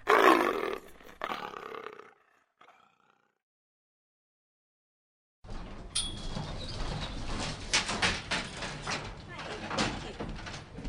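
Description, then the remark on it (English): A leopard lets out a loud, rough roar lasting about two seconds, then trails off into a few faint grunts. After a few seconds of silence, a steady wash of noise begins. “I don't want anything to do with the leopard.”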